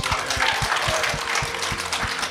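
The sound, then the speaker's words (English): An audience applauds at the close of a Level Up Human show, a Physiological Society and Biochemistry Society special, a dense, steady wash of many hands clapping at constant loudness throughout, with a regular low thumping pulse running beneath it. “Can you give everyone a huge round of applause?”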